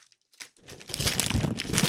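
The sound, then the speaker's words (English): Gift wrapping paper with a llama pattern tears open, a loud, continuous crinkly rustle that starts after a few faint ticks and builds steadily in intensity, with no voices. “The wrapping paper is killer, too.”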